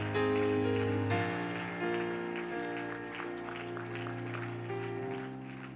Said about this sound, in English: Lord, we give you one more hand clap of praise, dear God.